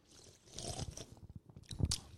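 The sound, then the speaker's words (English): Sips of a fizzy lemon vodka soda after a toast, with crackling carbonation and wet mouth noises in short bursts over about two seconds, no talking. “All right, let's cheers. Cheers to that. Cheers in a sip.”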